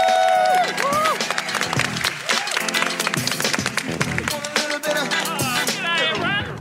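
Loud, dense audience applause at the close of a Climate Week special edition fills the whole clip, a steady wash of many hands clapping, with high whoops and whistles rising and falling over it before it starts to thin at the end.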